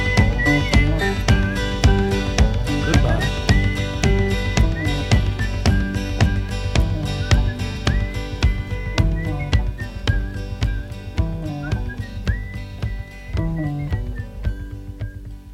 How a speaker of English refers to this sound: Time to try some whistling now. Can you identify this song by its whistling at the end?